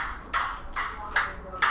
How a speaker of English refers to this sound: Damn, we should have a little bell, like ding.